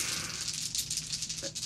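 Dice rattle continuously in a cupped hand or cup, a dense, bright clatter of rapid clicks that keeps up steadily for a couple of seconds with no voices.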